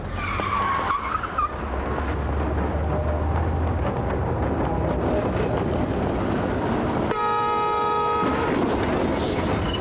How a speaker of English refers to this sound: Sadly, not for Nightmare, but for the episode of Coronation Street, in which Alan Bradley is fatally run over by a Blackpool tram.